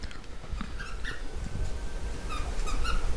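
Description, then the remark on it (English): A squeaky toy squeaks in short, high-pitched bursts, a couple early on and a quicker cluster near the end, over a low, steady rumble with no talking. “A squeaky toy right now?”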